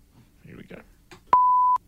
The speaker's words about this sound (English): Do we have a swear beep? Any beep? A ding? I'm looking for a beep.